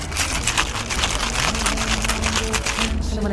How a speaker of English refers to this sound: So I just added some fresh basil into the shaker, and then I'm going to shake it quickly and pour it over ice.